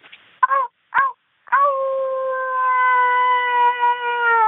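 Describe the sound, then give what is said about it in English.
A person imitates a werewolf howl: two short, sharp yelps, then one long, steady, wavering howl held for several seconds at a fairly high pitch, loud and alone. “Do you think you, would you mind doing your werewolf howl for me?”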